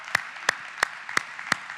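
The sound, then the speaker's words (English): Five sharp, evenly spaced claps in a steady rhythm as a church audience claps together in unison in agreement, with no voices over them. “Come on, nobody claps alone in this house. Let's all clap that in and agree.”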